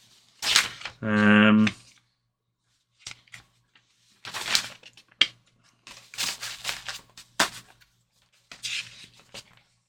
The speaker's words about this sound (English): Just need to find it. There we go. Shuffling through our notes.